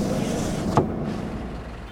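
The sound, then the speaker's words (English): A car's engine rumbles steadily, then a brief sharp thud as the car comes to a stop at a checkpoint and the noise settles into a lower, quieter idle. “I will convince him to let us pass the car stops.”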